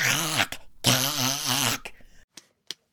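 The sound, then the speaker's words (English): A person vocally imitates a cat choking on a bone: two strained, raspy, warbling bursts with wavering pitch, followed by a few short sputtering gasps and clicks that trail off. “The first was my imitation of a cat choking on a bone.”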